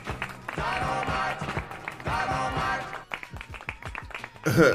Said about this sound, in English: Hey, yo, clap it. Just keeping it real. Just keeping it real.